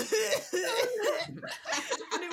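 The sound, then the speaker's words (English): A voice imitates a man's harsh, hacking laugh in a few rough bursts, loud, sounding much like repeated coughing. “his laugh just sounded like coughing.”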